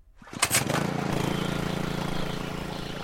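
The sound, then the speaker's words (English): A small engine-driven water pump, about the size of a lawnmower engine, coughs to life with a couple of sharp bursts, then settles into a steady, throbbing chug that keeps running evenly, at the bottom of a canyon. “I was running a small piece of equipment that was running a little water pump about the size of a lawnmower engine.”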